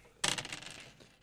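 dice being rolled

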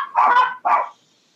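puppies barking

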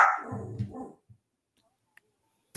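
dog barking

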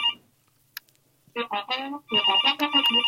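telephone ringing

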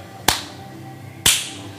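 single hand clap

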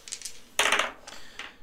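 dice being rolled

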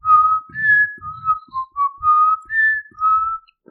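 failed whistling attempt

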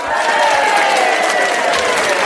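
cheering

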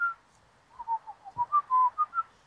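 birds calling outdoors

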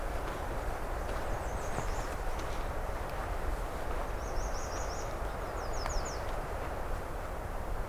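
nashville warbler singing

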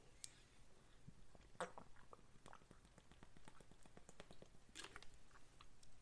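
person drinking water

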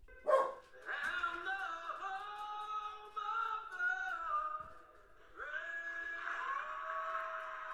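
dogs barking

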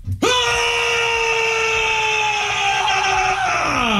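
man's primal scream

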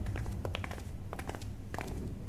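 footsteps climbing stairs

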